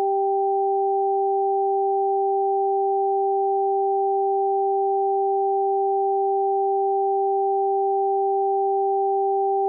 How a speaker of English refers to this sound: It's this tone. There's also a low, consistent tone. One of the tones will be on one side, so your left or your right, and the other tone should be on the opposite side.